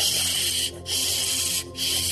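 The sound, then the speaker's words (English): A voice imitates a fire engine hose turned on full blast, spraying water onto a burning orange motorcycle, with a steady hissing 'shhh', broken by two brief pauses into three continuous sprays. “I made a spraying sound with my mouth as water doused the motorcycle blaze.”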